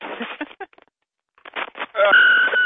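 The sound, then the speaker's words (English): Muffled, phone-quality talking and clatter, then a loud, steady high-pitched feedback squeal from a dropped phone rises and holds through the final half second. “Oh, you're giving me feedback. Yeah, I know. She dropped my phone.”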